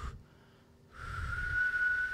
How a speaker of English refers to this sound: I can whistle, and I started fucking whistling. Oh, wow. Yeah. As loud as I could.